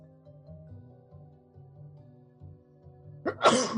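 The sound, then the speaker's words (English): A single sharp sneeze bursts out near the end, following a few seconds of quiet low humming tones in the background. “Bless you.”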